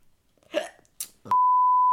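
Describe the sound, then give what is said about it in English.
A loud, steady censor bleep covering a spoken word, a single flat high tone held for just over half a second, cutting in abruptly after a few brief vocal noises. “And we're beeping that out because sponsor us.”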